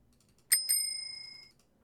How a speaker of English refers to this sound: I'll give it 4 rings of my bicycle bell.